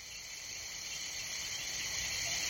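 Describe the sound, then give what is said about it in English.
A night chorus of frogs, insects, hippos, bats and other creatures, recorded by an artist along the banks of Kenya's River Mara, fills the air with a continuous, high, shimmering trill, steady and unbroken throughout, with a faint low ambient rumble beneath and no voices. “… recorded this chorus of frogs, insects, hippos, bats, and other creatures of the night for his CD, ….”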